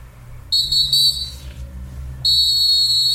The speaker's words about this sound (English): We got a new whistle this week.